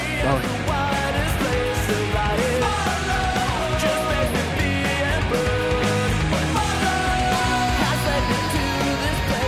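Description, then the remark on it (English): A loud, dense rock track from an album plays with full drums and distorted guitars, while an echoey, reverberant old-school style vocal scream rises in the background behind the music. “echoey scream in the background.”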